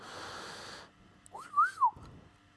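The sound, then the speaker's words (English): A whistled catcall imitated by a person: a sharp tone swoops up, holds, then slides down in a loud two-part wolf whistle, following a short burst of steady hiss. “Next minute I hear a cat call.”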